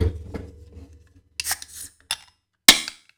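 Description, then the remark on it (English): A beer, Beach House's Schicki Micki IPA, is cracked open: bursts of hissy, crackling fizz, then a sharp, bright pop followed by a brief trailing hiss, after a low rumble at the start. No talking. “I'm going to go ahead and pop mine open.”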